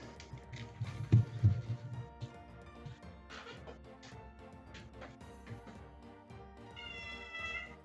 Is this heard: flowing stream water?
no